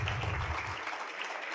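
An audience at an awards evening claps in a steady, dense wash of applause that holds at an even level throughout, with many hands blending into a continuous crackle and no voices standing out.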